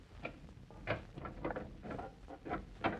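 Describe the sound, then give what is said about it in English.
A simple door lock being picked, with a handful of small metallic clicks and light scrapes at irregular intervals, fairly quiet, with no voices. “Oh, it was just a simple door lock.”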